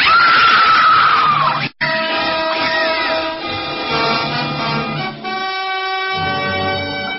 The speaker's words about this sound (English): we all heard the screams coming from …'s room